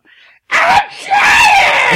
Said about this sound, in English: She has the greatest scream.